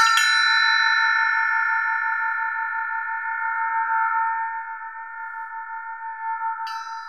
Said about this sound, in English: Like, here's a bell. I don't know why this is called an elephant bell, but so here it is.